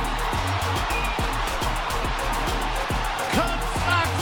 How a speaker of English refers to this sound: That ball is gone. A game-winning home run for Chris Morel. Can you believe it? Listen to this crowd.